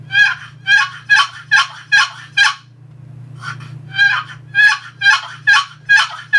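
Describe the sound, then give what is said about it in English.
A series of coarse, raspy gobbler yelps on a turkey call, sounded loud in two bursts of about six notes each with a short pause between, over a low steady hum. “Most of your gobbler yelps are going to be short, but it's going to be lengthening out.”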